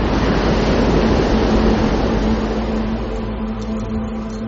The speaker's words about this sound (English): When the tide's coming in and you've got big seas, it's just this pounding sound all the time. And then there's like this real rumble as the sea comes out again.